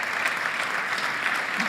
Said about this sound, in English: Let's give God the best clap of praise.